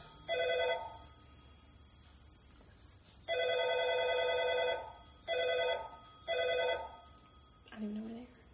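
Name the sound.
telephone ringing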